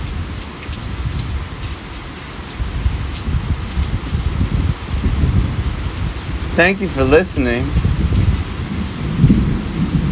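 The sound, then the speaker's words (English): Heavy rain pours steadily while deep thunder rumbles and rolls throughout, loud. Partway through, a person speaks a few words over the storm. “coming at you from a very stormy and exhilarating 1548 Salon.”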